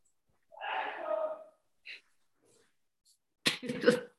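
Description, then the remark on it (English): A breathy, drawn-in build-up followed a couple of seconds later by a short, muffled, stifled sneeze, held back, with no talking around it. “I was able to sneeze silently.”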